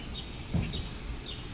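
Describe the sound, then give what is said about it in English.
Three faint, high-pitched chirps from birds outside repeat at a loose, uneven pace over a steady low background hum. A soft thump falls between the first two. No one speaks. “Now you'll notice that I'm sort of facing the jerk birds as opposed to having them off to my left.”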